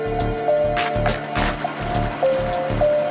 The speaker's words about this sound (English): It simulates white sound, in quotes, or screening out unwanted noise. Produces simple breaking wave patterns, random surface effects, simulates rain producing light or gentle downpour of rain.